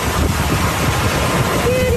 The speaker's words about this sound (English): Listen to this. Listen to the wind.